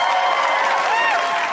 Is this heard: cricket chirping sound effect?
no